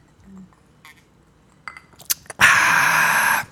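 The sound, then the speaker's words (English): Someone takes a sip of a drink: a few light clinks and taps of a glass, then a loud, breathy slurp lasting about a second. No one speaks. “Let me take a sip here.”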